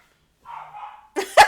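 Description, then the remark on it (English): Dogs excited about going outside bark: a low whining growl first, then two sharp, loud barks in quick succession at the end, with no one talking. “Your dogs agree with you.”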